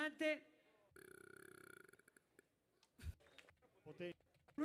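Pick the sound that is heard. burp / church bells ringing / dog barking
burp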